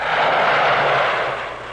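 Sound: jet aircraft flying overhead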